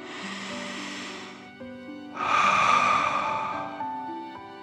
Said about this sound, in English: Breathe in through your nose, filling up your chest and belly, and then out through your mouth, pretending you are breathing fire. Ready? Okay, deep breath in and out.